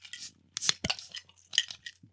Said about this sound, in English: Got a lot of clinking there. Failed to open the beer. I'm the only one with a can.